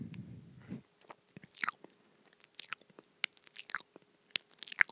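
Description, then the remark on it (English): Someone chews a chicken nugget: a brief low rumble, then a string of quiet, irregular crunchy bites and wet chewing clicks, with no talking. “I'm now eating the chicken nugget.”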